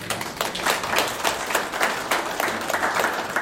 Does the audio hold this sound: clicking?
no